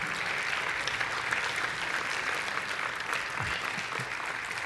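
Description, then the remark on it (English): A standing audience applauds to thank God, a dense wash of many hands clapping at an even, sustained level throughout without pause. “Let's stand, put your hands together, and let's just thank God for just a moment.”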